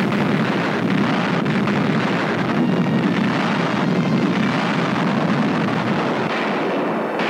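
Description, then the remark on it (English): A dense, continuous roar of parachute bombs, developed for low-level bombing, exploding on a target at a proving ground, rumbling at steady, high loudness for several seconds, the explosions blurring into one booming wash rather than separate bangs. No voices are heard. “At another proving ground, parachute bombs developed for low-level bombing blast the target.”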